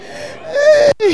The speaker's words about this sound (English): Bless you